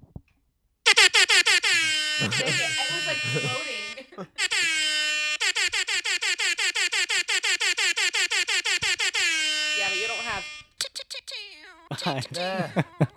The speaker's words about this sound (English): So that is Kaylee's version of air horns.